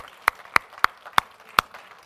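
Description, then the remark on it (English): Five sharp, crisp hand claps in a steady rhythm, about three per second, given by an audience as a clap offering to thank the Lord, standing out clearly against a faint background murmur with no speech. “Now, would you give the Lord a big clap offering and thank him?”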